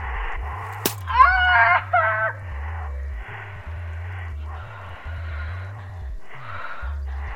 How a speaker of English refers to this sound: Just snap the arrow. Aye. That's it. Simple, innit?